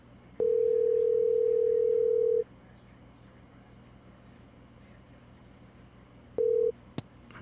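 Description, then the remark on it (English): A phone ringback tone on an outgoing call that goes unanswered and is forwarded to voice mail: one steady two-second electronic ring, a long pause of quiet line hiss, then the start of a second ring that cuts off abruptly. “We're just going to call Dougie Fresh again. We're going to make him pick up the phone.”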